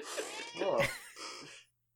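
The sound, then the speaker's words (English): A cat meows twice in quick succession, a drawn-out wavering cry followed by a shorter one, fairly clear. “The cat's still meowing because she doesn't know if she wants to be in the room or not.”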